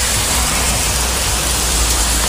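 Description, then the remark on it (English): Heavy rain from a quick hit-and-miss Sunday afternoon thunderstorm in the St. Louis area pours down in a dense, steady hiss, loud and unbroken for the whole stretch, with no voices and no distinct thunderclap standing out. “Well, that's what some people heard and saw Sunday afternoon as those quick hit-and-miss storms popped up in the area.”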